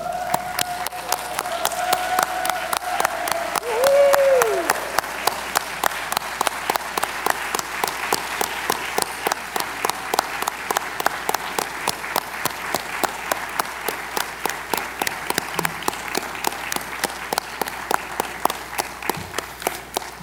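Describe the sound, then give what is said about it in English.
A large standing audience applauds steadily for about twenty seconds to show appreciation for ACB employees, a dense, even wash of clapping with a brief rising whoop or whistle early on. No one speaks over it. “Now I'm going to ask you, if you would, to stand and by your applause, show your appreciation for our great employees.”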